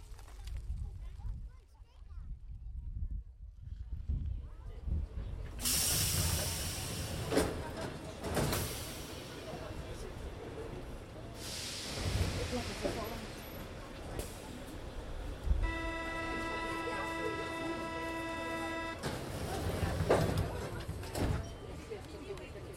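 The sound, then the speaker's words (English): A metro subway train rumbles and clatters along, its noise swelling in broad bursts, with a steady tonal whine from the carriage partway through and people talking faintly beneath. “There's a lot of French people on this subway. Metro.”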